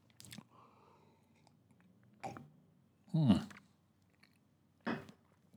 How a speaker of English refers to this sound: Slurping sounds are good to hear when you got earphones in or earbuds in, listening to a podcast. Hopefully you're listening at least at a souped up speed, so you only heard the slurping sounds for a little bit.